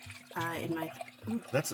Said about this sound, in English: Shoot, I'm already pouring my second glass of wine here.